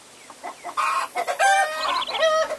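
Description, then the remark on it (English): Chickens clucking: a run of short, throaty clucks and squawks that builds into longer, louder calls, with no one talking. “Chickens?”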